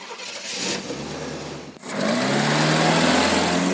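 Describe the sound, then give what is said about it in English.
A car engine runs at the beach with a low, steady hum, briefly dips, then comes back louder with a rougher revving drone. No one speaks. “I'm at the beach, and when I get out of my car,”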